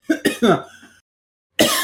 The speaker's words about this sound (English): After I stop coughing